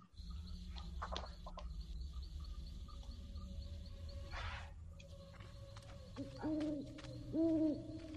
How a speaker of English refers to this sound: There's an owl.